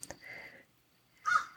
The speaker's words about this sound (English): And you get to enjoy Marvin the Crow because he is here.